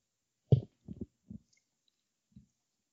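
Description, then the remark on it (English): A few soft sips and gulps of whiskey from a glass, a quick cluster of low wet swallows followed by one more after a pause, with no talking. “Let me get a sip of this whiskey here.”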